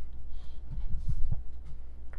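Someone gulps down a Monster energy drink, a short run of three or four soft, low swallowing thumps in a quick rhythm over a steady low hum, with no talking.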